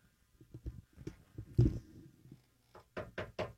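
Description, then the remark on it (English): Someone knocks on wood in uneven clusters, a few soft taps, then a louder thump, then a final quick burst of four raps, with no talking. “That's me knocking on wood.”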